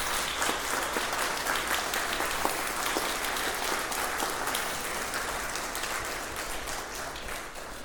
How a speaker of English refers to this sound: In the name of the Father and the Son and of the Holy Spirit. Amen. You can applaud.